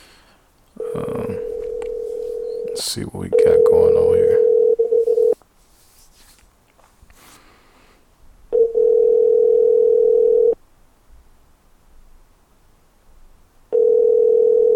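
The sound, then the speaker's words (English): Outgoing phone call ringback to a woman on a call-in line: a steady electronic tone repeats in two-second bursts separated by silent gaps, clear, with a man briefly speaking over the first rings. “Man, if this woman don't answer the phone, okay.”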